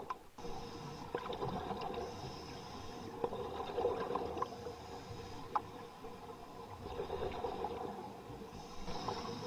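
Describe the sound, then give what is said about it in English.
Muffled underwater scuba diving ambience with a steady low rumble and soft bubbling, broken by faint high whistle-like calls and a few brief clicks, with no voices. “Enjoy scuba diving.”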